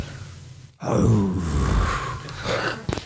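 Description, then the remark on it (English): A person voices a growling, rough roar, imitating a lion. It comes suddenly after a quiet low hum, is loud, lasts about two seconds, and ends with a brief clatter. “That was a terrible roar. Yeah, that didn't really sound like a lion.”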